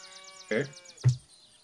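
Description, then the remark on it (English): Two short, harmonic calls of cows mooing on a dairy farm sound in quick succession, the second deeper and fuller, with a faint repeating chirp in the background. “I hear the dairy farm in the background. Moo moo cows.”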